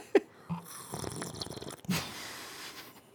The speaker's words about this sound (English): Ooh, did you just hear me slurping? That was gross. Hold on. I did. That was nice. Let me do it intentionally so it makes it less gross.